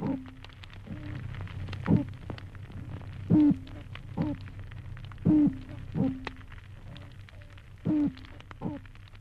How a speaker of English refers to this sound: And that's a territorial signal. And that these fish, these toadfish try not to have more than one in an area. And so as you move from one area to the next, where you have a continuous background of toadfish boat whistle sounds.